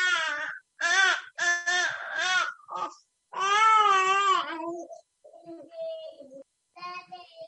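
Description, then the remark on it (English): A newborn baby cries in a series of loud wailing bursts, each broken by short gasping pauses, with the last few cries trailing off into softer whimpers. No talking is heard. “And so like I say, you know, we're with family tonight, so there may be a few interruptions to where, because he has a newborn himself.”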